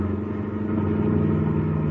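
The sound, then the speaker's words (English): A car engine revs up and accelerates as the driver steps on the gas to come up alongside another car, a steady low rumble with strong harmonic drone that grows slightly louder partway through, continuous with no talking. “Now come up alongside the other car. But come on, step on the gas.”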